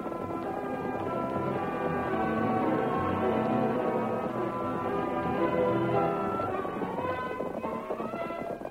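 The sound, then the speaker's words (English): Horses gallop steadily as men ride back to camp, their hooves clip-clopping in a quick rhythm beneath loud, continuous dramatic music that fills the whole stretch, with no talking. “Back to camp, men, and don't spare the horses.”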